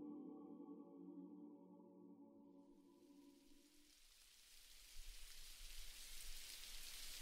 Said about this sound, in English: Paul ran through the rainy evening